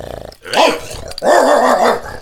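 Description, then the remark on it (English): A dog lets out a harsh, wavering bark-growl, then after a brief gap a longer, sustained growling snarl with rising and falling pitch, loud and without any talking. “I know you can't stand Tallulah and Sweetie, but please, stop barking!”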